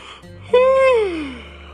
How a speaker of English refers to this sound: … was still yawning from his nap. He needed to wake up.